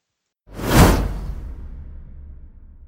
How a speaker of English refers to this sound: We got to start off with the text after the swoosh.